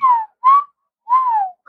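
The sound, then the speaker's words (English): A person whistles a short melodic phrase of a song, a few clear, sliding notes separated by brief pauses, fairly loud, with no talking. “Who did the whistle song?”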